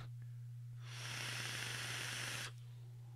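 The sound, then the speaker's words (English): A steady, bright hiss of vapor rushes in for about a second and a half from a Noisy Cricket vaporizer (Velocity Noisy Cricket combo) as its button is pressed, then cuts off abruptly, with a constant low electrical hum running underneath throughout. “It's like, oh, did you want vapor in your soul? Because that's what you're getting.”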